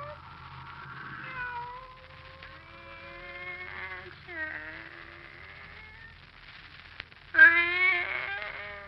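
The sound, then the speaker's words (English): A pet cat, Kitty, meows repeatedly in long, drawn-out, wavering cries, moderately loud, ending with a sharper, louder yowl, over a low background hum. “Come here, Kitty. Whom are you looking at?”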